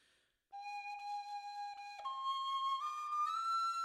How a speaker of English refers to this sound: On the brow of the hill, the wife stops. She turns, and in her hands she grasps her penny whistle.